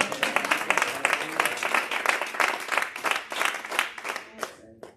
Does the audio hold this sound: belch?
no